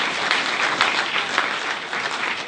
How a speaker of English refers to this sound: If it is, you are so welcome. We're going to give you an enthusiastic round of applause. Let's welcome our guests.